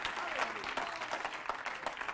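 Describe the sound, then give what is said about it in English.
A church audience claps their hands to the Lord, many hands clapping in a dense, steady patter that fills the space without pause, fairly loud, with a voice faintly audible beneath it. “Clap your hands to the Lord in Jesus' name.”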